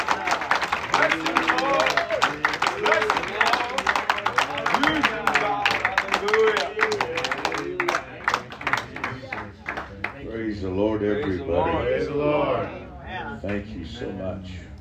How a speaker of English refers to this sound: Give the Lord a hand clap as you come.